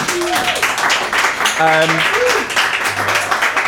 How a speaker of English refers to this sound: So I think that deserves a round of applause in itself.